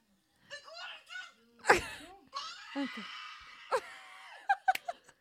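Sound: woman moaning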